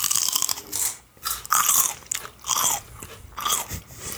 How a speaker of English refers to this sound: I'm dying to like crunch this celery. All right, quick crunch session. Everybody get it out of your system. Here we go.